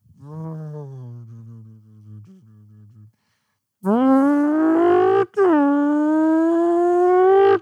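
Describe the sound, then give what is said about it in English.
A voice imitates car noises: a low, droning engine hum for about three seconds, a pause, then a louder, higher revving whine with a brief break before it climbs again. “I also can do like good car. Let's hear it. Car noises.”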